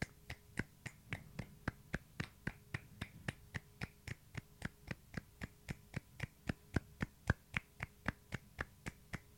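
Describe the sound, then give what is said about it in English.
Light hand clapping by people clapping at the same time, a deliberate light flurry of applause, in a steady, even beat, roughly three sharp claps per second for about nine seconds, crisp and moderately quiet with no talking. “But also we were clapping at the same time, which of course is not how people...”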